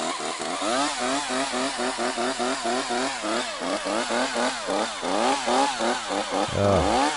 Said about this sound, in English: Chainsaws make a mess. You know, and then you just crank that thing up.